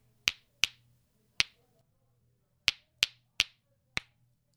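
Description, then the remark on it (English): Two rocks are banged together eight times in a simple experiment, in sharp, bright clacks. The hits come in an uneven rhythm, each a crisp crack with a quick ring-off, over a faint low hum and no talking. “Bang two rocks together in this simple experiment.”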